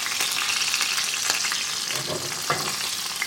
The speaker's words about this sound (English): Actually, I'm like shaking. And as I'm shaking, the oil's sort of bubbling up over my cutlets.